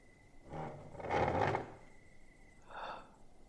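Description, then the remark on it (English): A wooden chair is pulled across the floor in a long, rough drag, followed by a shorter scrape a moment later, fairly quiet with no one speaking. “Can you pull me a chair?”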